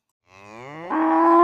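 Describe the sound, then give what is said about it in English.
A single Western-stock dairy cow at the Will Dairy moos loudly, a low drawn-out call that swells in volume and rises in pitch toward the end, with no talking. “Their cows are real Western stock.”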